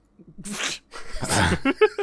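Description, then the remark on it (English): A dog makes odd noises: a few low grunts, then two harsh sneezing snorts, followed by three short, high yips in quick succession. “Why does this dog sound like it's having a stroke?”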